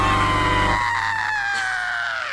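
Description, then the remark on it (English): A loud, drawn-out Halloween scream sound effect, a single sustained cry whose pitch slowly sinks over a couple of seconds, heard alone with no talking. “No, no, that's the Halloween. You want me to put the scream?”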